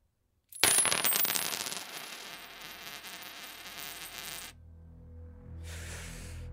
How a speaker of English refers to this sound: Right, are you ready for the coin drop? This should be a game show, this catchphrase I'm about to say. Drop those coins!